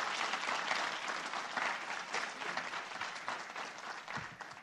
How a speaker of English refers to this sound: Wonderful. Thank you. Can we all give them a great round of applause?